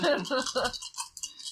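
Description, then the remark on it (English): Four dice clatter in a quick series of bright, rattling clicks that trail off over a second or so, with a brief murmur of voices at the start. “What do you want me to roll? Four roll extraneous.”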